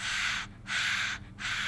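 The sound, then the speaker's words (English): Someone imitates the heavy, dragon-like nose breathing of a baby girl in her eighth or ninth month: three loud, hissing breath bursts in a steady rhythm, with brief pauses between them. “She has a lot of breathing through her nose and a lot of...”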